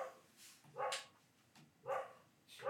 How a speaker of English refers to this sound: barks at way more than just cats. She barks at cars, people, anything.